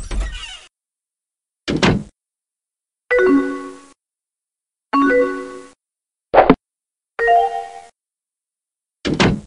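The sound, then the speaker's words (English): An instant messenger's short computer-style door-slam sign-off sound effect plays about seven times in a row, each fairly loud burst separated by brief silences, with no talking. “And yes, I did that door slamming sign-off noise one last time just to really make it sting, because was there any worse sound than your crush signing off without notice?”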